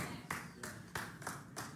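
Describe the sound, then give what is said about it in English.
Five people clap slowly and sparsely, five distinct hand claps at a steady, hesitant pace with nothing joining in, the sound faint and thin against a quiet background. “It's like, I'm going to clap until everybody else claps, and then nobody else clapped.”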